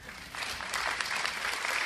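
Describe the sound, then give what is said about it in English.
An audience applauds steadily, many hands clapping in a dense, even patter that swells slightly after the start and holds at a fairly loud level with no voices over it. “All of you who are clapping, I suggest you do some more thinking.”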